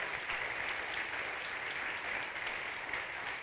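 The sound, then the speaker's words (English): A crowd claps steadily for everyone who helped the event happen, a dense wash of many hands applauding at an even, sustained level with no pauses and without any voices. “So let's give everyone a clap who's helped it happen.”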